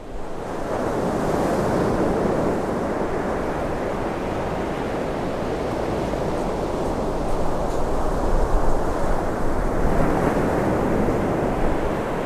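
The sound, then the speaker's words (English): Ocean waves break steadily on the shore at Aberdeen in a continuous, rushing roar, with a slight swell in intensity near the end and a touch of wind noise. No voices are heard. “The relentless rhythm of the ocean waves is a reminder of the staying power of nature and of the city that lies beside these shores.”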